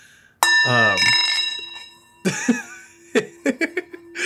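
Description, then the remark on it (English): A single strike of a brand new bell rings out clearly and sustains a long, shimmering resonant decay over nearly two seconds, with a voice and laughter chiming in during and after the ring. “A brand new bell. Ooh, it's that's a that's got some nice resonance to it.”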